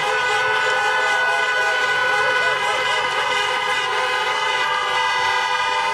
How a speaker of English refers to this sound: Yeah, Joe Biden gave his election night speech to a crowd of honking car horns there.